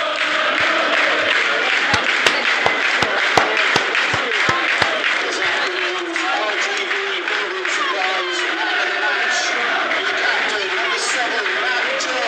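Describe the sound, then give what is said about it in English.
A large football stadium crowd applauds and murmurs, a steady wash of clapping with a few sharp louder claps early on, the roar continuing evenly throughout. “It's the crowd.”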